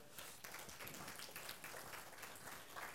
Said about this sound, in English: Could we give a clap offering to the Lord?